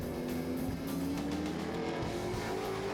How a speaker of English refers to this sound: Of course he couldn't hear. He's driving the loud car.